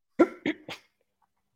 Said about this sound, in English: I'm sorry for coughing right before that.